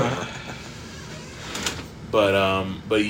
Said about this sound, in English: Fucking this chair. I really hope that it comes off in the recording because that chair is like insanely loud.